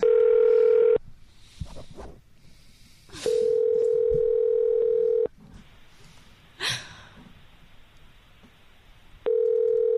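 A phone ringing on an outgoing call: a steady electronic ringback tone sounding in long two-second pulses separated by several seconds of quiet, with a short breathy noise in one gap.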